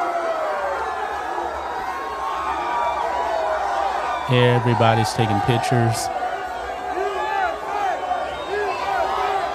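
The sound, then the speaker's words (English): A crowd breaks into a rhythmic chant of "USA" as Donald Trump enters the building: loud, repeated syllables for a couple of seconds over a constant murmur of crowd noise, with a person speaking throughout. “USA chants.”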